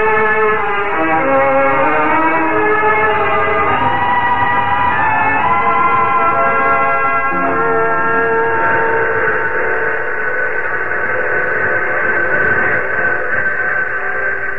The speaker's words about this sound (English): Is that the 10:30 for New York? Sure is. Always give us a goodbye whistle.